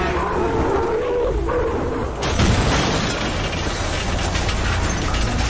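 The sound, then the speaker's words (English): A half-empty red double-decker bus in a Stockholm suburb, just after 11, roars with a strained whine as it accelerates and skids, then a sudden loud crash bursts in midway as it hits the wall of the station depot, followed by a heavy, sustained rumbling clatter. “The bus accelerates, skids, and crashes into the wall of the station depot.”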